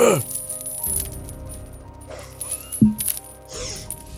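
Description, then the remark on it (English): Metallic rattling and clinking, like chains shifting, in a few irregular bursts over a steady low hum, with a sharper jangle near the middle and a softer rustle at the end. “You hear chains rattling to the right.”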